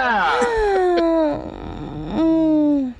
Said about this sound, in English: Excuse my yawning, like, fuck.